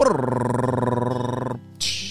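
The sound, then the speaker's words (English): A voice imitates a drum roll with a steady, rolling, buzzy trill lasting about a second and a half, then cuts off and finishes with a short hissing cymbal-like burst. “Drum roll, please.”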